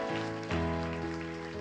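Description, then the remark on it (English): A crowd gives the Lord a hand clap for a testimony, clapping steadily in a dense, rain-like patter while sustained keyboard chords ring underneath, the chord shifting about halfway through. No one speaks. “Can we give the Lord a hand clap for that testimony?”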